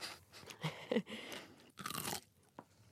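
Crunchy bites of a pickle: a few loud, wet crunches spaced irregularly, with quieter chewing in between and no talking.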